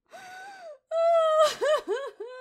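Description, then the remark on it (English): A human voice imitates eel shrieks: two long, wavering high wails, then a breathy rasp and a run of quick rising-and-falling squeals, loud and alone. “Do you hear that, Your sound? Highness? Those are the shrieking eels.”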